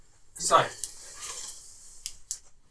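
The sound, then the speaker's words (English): Soft handling noises: a burst of rustling and clatter, then a few sharp clicks and light scrapes spaced apart, as a man picks up and shuffles his pen and paper. “is just getting his pen and paper.”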